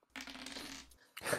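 Dice are rolled for a perception check, rattling and tumbling across a hard surface in a quick clattering roll, then stopping briefly before another sharp clack. No one speaks.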